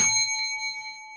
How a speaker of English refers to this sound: And I threw a bell in there.